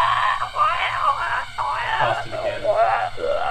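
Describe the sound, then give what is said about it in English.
A voice imitates a huge screaming mushroom dying down as it degrades from acid: a continuous high, warbling wail that wavers in pitch and breaks into moaning, groaning swoops for several seconds, fairly loud. “It starts to degrade and you just hear...”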